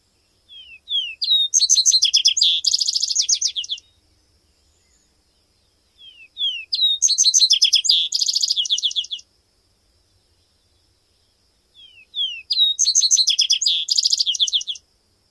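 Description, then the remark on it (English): A vesper sparrow sings three times with pauses between, each song opening with a few downslurred whistled notes before breaking into rapid, bright trills. Loud and clear, with no other sounds. “A mnemonic for Vesper Sparrow is, "Come, come, where, all together down the hill."”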